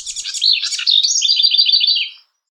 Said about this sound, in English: Bird sounds, then, are sonic neurotransmitters that leap across species boundaries.